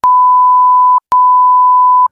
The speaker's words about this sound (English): So, of course, I'm going to edit this out. So those of you listening at home, you're going to get the censor beep in a second.